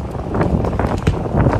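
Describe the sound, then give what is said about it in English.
Strong wind roars steadily and loudly across pan-flat, dry open country, buffeting the microphone with deep rumbling gusts and a broad hiss that swells and dips slightly over the short stretch. “And for the most part, it is pan flat, which makes it very windy, which makes it very prone to fires.”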